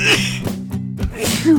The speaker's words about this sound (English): In the fall, trees lose their leaves. When they come back, I start to sneeze. It's these dadgum allergies.